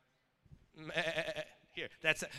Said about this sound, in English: Not a goat. It's a lamb, a sheep.